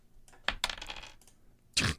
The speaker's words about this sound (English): I've been trying to roll these dice all different ways.